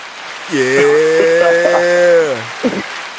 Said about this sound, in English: I'm gonna give him an applause.